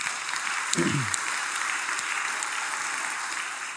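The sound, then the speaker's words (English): Steady, dense applause from a crowd at University Presbyterian Church celebrating anniversaries fills the whole clip, a continuous hiss of many hands clapping at an even level, with a brief low murmur near the start. “So lots of applause.”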